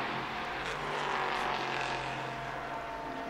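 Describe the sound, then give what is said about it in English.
Loud, steady engine roar as race cars number 55 and 33 go by, a dense mechanical drone with humming tones underneath that holds at full volume the whole time, with no voices. “55 goes by, 33.”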